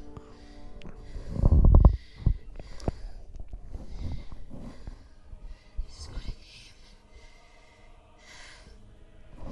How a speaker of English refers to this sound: One interesting thing is, like, even in the movies, when Darth Vader's talking, you can hear his breathing still while he's talking. So I think the machine breathes for him. It makes that sound,